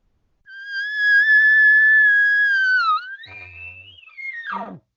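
An elk cow call, the cow calling a group of elk over: a long, steady, whistly tone with harmonics dips briefly, jumps to a higher note, then ends in a quick descending squeal. No one talks over it.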